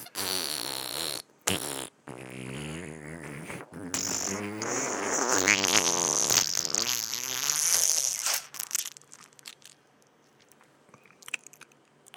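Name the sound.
mouth imitating a fart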